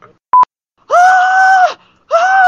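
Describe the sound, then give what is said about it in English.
A person imitates a pterodactyl screech with a loud, shrill, sustained cry, then starts a second one. A brief high blip comes just before, and no one talks. “And I basically had a pterodactyl screech on the bus.”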